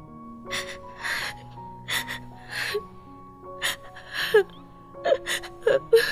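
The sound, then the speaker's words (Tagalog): A woman cries in broken sobs, with shaky gasping breaths and whimpering catches coming in uneven bursts, no words spoken. “Bakit ka umiiyak?”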